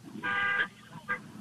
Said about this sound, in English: Honk the horn for me. Honk the horn. I want to hear the horn. Honk the horn. Let me hear the horn.